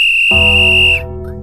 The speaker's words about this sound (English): I mean, that was kind of cool, but what? That's the greatest whistle of all time. I'm going to do that again, just on purpose.